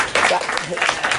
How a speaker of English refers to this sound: You shouldn't cheer. You should boo.